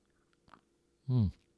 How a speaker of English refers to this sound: Let me take a sip of tea here.